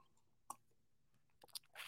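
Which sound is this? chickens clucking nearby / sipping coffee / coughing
sipping coffee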